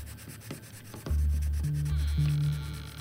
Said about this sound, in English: I was tracing one of the outside lines with a blue pencil, focusing so hard on staying inside the lines that my tongue was sticking out a bit.